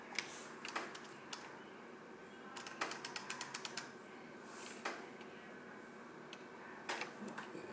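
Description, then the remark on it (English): Irregular sharp ticks of water dripping from an air conditioner that has just been switched off, landing singly and in quick little clusters over a steady low hum, with no voices. “That's my air conditioner dripping after I just shut it off.”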